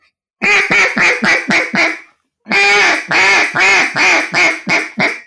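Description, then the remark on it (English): A duck call blown in an aggressive hen, or lonesome hen, sequence: a loud run of about six drawn-out quacks, a short pause, then a longer, steady run of eight more, with no voices. “That's an aggressive hen, then also known as the lonesome hen, would be just like a.”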